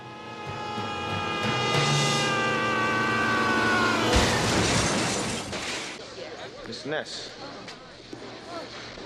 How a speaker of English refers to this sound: my number five is Kevin Costner as Elliot Ness in The Untouchables. This goes back to my theme where he throws Frank Nitti off the building and he lands through the car. Well, let's hear it.